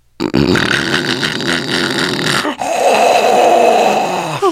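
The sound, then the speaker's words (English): A person loudly imitates snoring with their voice, a rough, rattling drawn-out snort followed by a raspy, buzzing exhale, with no talking. “So tell me if this is soothing to you, because this is what it sounds like.”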